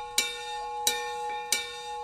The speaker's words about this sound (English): She was busy working in her office when she heard the bell ringing.